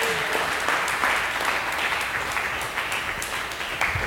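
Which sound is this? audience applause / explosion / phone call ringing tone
audience applause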